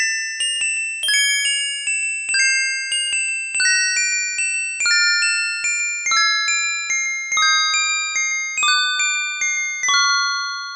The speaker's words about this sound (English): this is Continue. This is when you're asked if you want to continue. It's the music that plays during that time for Ghouls and Ghosts for the Genesis.